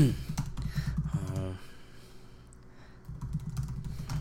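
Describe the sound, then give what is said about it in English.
Rapid keyboard typing clatters in quick, uneven bursts, pausing briefly midway before resuming, with a low background hum and faint voice-like murmurs underneath. “excuse the typing, people.”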